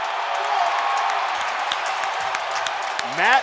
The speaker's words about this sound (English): Matt Kemp delivers a souvenir. Wow. I was pretty sure they were cheering for that run of jokes we had.